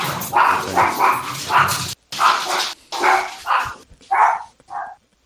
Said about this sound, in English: Watching someone try to remain calm as dogs bust by on a podcast is the best. I'm just like, this is happening. It's fine.